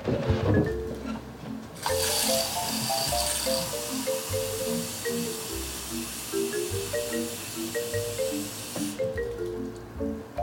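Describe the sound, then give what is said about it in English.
Water runs steadily into a 2-cup measuring cup for several seconds while measuring 3 cups of water, a continuous hiss and gurgle that starts abruptly and cuts off, with soft music playing underneath. “So next up is 3 cups of water. So that's 2 cups. So fill that up.”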